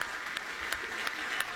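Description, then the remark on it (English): An auction crowd applauds prematurely as the bidding reaches $13 million, in a steady wash of clapping, with a few sharper claps standing out at regular intervals over the dense, even noise. “That's premature clapping.”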